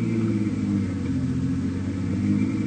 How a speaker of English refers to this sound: There it is, the little one with the engine turning over.